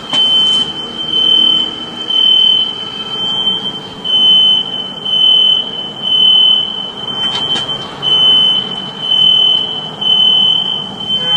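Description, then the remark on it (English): A house alarm blares a shrill, high-pitched tone in steady repeating pulses, recorded on a phone from across the street outdoors over a broad background rumble, with no one speaking; it went off after the power was knocked out during a windstorm. “I'll play the sound for you of the house alarm.”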